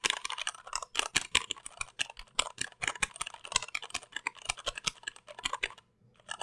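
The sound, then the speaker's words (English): Keyboard keys pounded hard in a fast, uneven typing burst, each sharp clack loud, continuing for several seconds before stopping abruptly. No voices. “And now I'm just gonna pound it.”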